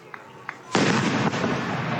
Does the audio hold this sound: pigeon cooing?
no